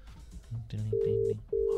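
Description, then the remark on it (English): Phone ringback tone of a call placed from a phone to Kris Jenner's number: steady electronic tone bursts with a short gap between them, clear and fairly loud, while voices murmur underneath at the start. “Ringing. It's ringing.”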